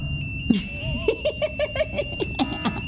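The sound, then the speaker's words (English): A synthetic alarm sound effect played from a computer beeps in a rapid, pulsing series of short electronic tones, fairly loud, with a steady high whine and some faint background noise. “I got this great alarm.”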